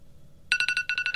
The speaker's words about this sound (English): Oh, the alarm's up.